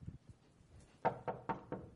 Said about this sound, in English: So he goes back to his friend's house. And he knocks on the door.